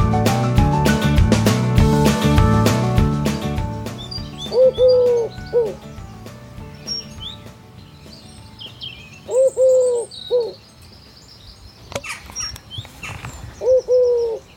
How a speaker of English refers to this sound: The beautiful bucolic sound of the wood pigeon. That is what woke me up this morning at 7:30 a.m.